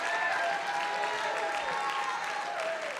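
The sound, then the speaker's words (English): An audience claps together in a dense, steady wash of applause that stays loud for the whole stretch, with a faint sustained tone or voice drifting above it. “Why are you not clapping right now?”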